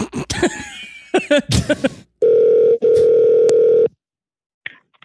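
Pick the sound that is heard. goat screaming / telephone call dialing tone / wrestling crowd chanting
telephone call dialing tone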